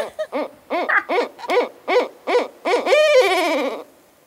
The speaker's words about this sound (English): A barred owl says, "Who cooks for you? Who cooks for you?"